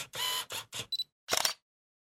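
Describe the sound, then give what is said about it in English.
The Snapchat phone app's camera-shutter sounds: a quick run of crisp, bright bursts with two tiny clicks, then one final fuller snap before silence. No one speaks. “Hold on, I have to mute my phone. AFK, edit out the fucking Snapchat noises.”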